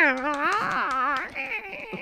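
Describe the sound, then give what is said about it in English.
A person playing Catwoman vocally imitates a cat, drawing out a long, wavering, yowling meow for over a second before it trails off into softer, breathy sounds. “I like the idea of like, what does it sound like when a cat fucks a bat?”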